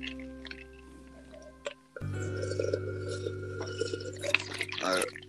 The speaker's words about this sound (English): And I'm just going to breathe and sip some water.